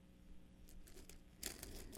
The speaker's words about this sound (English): There's a passage that Paul, I'm going to find it here real quickly as I'm rustling through my papers, in 2 Corinthians 7